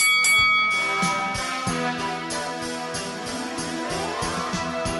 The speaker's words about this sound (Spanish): Y que suene la campana.